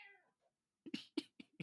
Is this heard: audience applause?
no